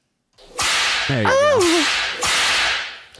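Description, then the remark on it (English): Two sharp, hissing whip cracks ring out loud, about two seconds apart, with a brief wavering vocal exclamation sounding between them. “You have a whip, though, for Catwoman.”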